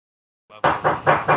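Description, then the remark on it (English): Four loud, evenly spaced knocks on a neighbour's door next door in Toronto, coming in a steady rhythm after a brief faint murmur, each hit dull and booming with a short ring. “Sound like they're knocking on our door.”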